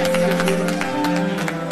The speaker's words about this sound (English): If you believe in this, let us give God a hand clap of praise right now. Come on, come on. Amen. Amen.